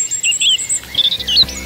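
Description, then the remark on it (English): Several birds sing at once in a bright dawn chorus in England, overlapping high chirps, trills and whistles weaving together continuously, with no talking. “Ah, England's dawn chorus. Beautiful, isn't it?”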